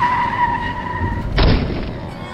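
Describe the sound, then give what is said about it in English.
A car skids to avoid a chicken truck with a sustained, high tire screech lasting over a second, then a loud crashing burst of noise cuts in and rumbles briefly as the scene ends. “Susan, watch out for the chicken truck. Susan, go!”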